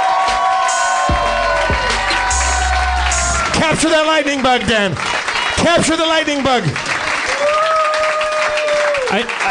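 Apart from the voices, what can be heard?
audience cheering and applauding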